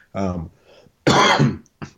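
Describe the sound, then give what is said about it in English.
A loud cough into a microphone: a rough throat-clearing burst, then a harsher, longer hack, ending with a short final cough, all within about two seconds. “I was supposed to hit my cough button.”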